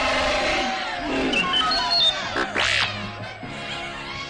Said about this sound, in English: Cheering rebels and Hoojibs rushed into the cave as Chewbacca gave a victory roar.